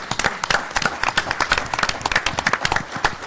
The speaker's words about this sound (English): I love it when there's a room full of government officials clapping for themselves. Pat myself on the back.